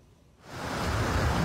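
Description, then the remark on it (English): A loud, steady roar of rushing floodwater in Palm Springs, a desert town, caused by heavy rain from Hilary, swells in after a quieter start and continues as a dense, churning wash of noise, with no voices. “This morning, Palm Springs is under a local emergency order as heavy rain from Hilary is causing dangerous flood conditions and prompting at least 3 swift water rescues.”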